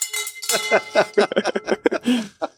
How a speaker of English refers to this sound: Come on. Ring that victory bell. Come on. I've been waiting for this one. You got to ring harder than that.